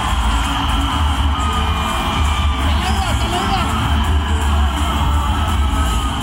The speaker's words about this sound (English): It's mad, isn't it? And the DJ starts encouraging the crowd to shout Dhoni here, I think.